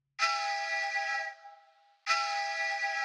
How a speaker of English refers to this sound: It's the ringtone I gave my wife for when she calls to say goodnight with Eamon.